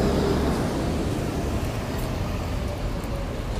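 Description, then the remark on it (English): Steady, loud rumble of road traffic outside with cars going by, a continuous low engine and tire roar with no voices over it. “Hold on, there's a lot of cars.”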